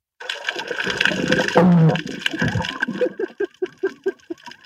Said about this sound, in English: Oh, man. So you heard the fart, and there goes the big fart bubble.